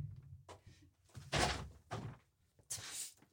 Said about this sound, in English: Shoot, close the door.